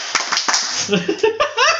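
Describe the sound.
A few sharp, irregular hand claps ring out alongside people talking and laughing, the slaps loud and crisp against the busy chatter.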